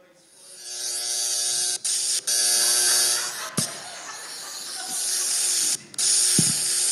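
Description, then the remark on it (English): A phone app mimics an electric shaver with a steady, tinny buzz and hiss that drones for several seconds, briefly cutting out a few times before resuming. “Seriously, I can use it as a shaver.”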